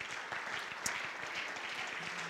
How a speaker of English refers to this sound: Would you clap your hands to the Lord before you're seated?